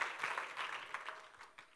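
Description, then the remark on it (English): A church audience gives the Lord a hand clap of praise, a dense wash of many hands clapping at a steady moderate level with a few sharper claps standing out, fading slightly toward the end. “Give the Lord a hand clap of praise and you may be seated.”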